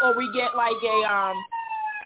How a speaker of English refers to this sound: We get a sirens and everything.